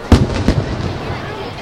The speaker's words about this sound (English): So as the fireworks continue here at the LP Field, which we call Titan Stadium, let's do a little recap.